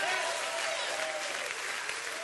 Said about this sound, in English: Come on. Clap your hands and rejoice. Because we need to let him know that he is our God.